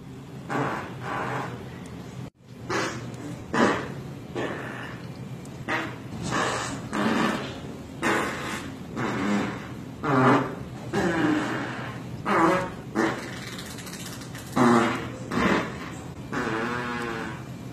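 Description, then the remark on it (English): A string of loud, buzzy fart sounds from a fart video clip plays one after another in short bursts of varying pitch and length, with faint background murmur between them. “I'm going to turn this into a full-time job, even though all it is fart videos.”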